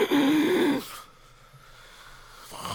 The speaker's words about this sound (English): I can hear you breathing like an old man. I'm full of mucus from these damn allergies.